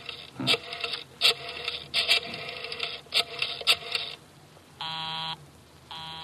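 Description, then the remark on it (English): A telephone busy signal: after several seconds of rough, clattering noise, a buzzy tone pulses on and off twice in an even cadence, clear, with no voices. “Busy? He's probably left the phone off the hook, Inspector.”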